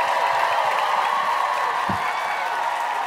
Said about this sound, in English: I'm so glad you guys are all here. Clap it up for yourselves one more time.